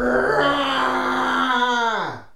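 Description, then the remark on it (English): A person does a vocal imitation of a jaguar roar: a loud, sustained, harmonic moan-like cry held for about two seconds, then sliding downward in pitch as it fades out. “But can I get one good Jag roar?”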